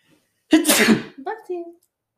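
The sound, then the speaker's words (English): One loud sneeze bursts out in a harsh, breathy rush, followed by a short voiced sound as it trails off, with silence around it. “Bless you. Thank you. I think I exploded my spleen.”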